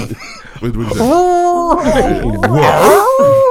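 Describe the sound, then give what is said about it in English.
A man's voice mimics a police dog, letting out a few drawn-out, bending woofs, with chuckling and laughter mixed in around them. “Hey, if a cop said to me they killed my partner the dog, I would say, what's the last thing your partner said to you?”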